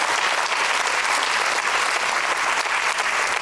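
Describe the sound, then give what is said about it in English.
Sustained applause from a large crowd applauding God in a worship service, a dense, steady wash of clapping at full volume that continues without a break for the whole stretch, with no voices standing out. “Psalm 100 says, on your feet now, applaud God.”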